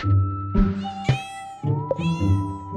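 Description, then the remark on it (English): A kitten about a year old meows repeatedly, a few drawn-out, rising and falling calls in quick succession, with no talking. “So I had two kittens.”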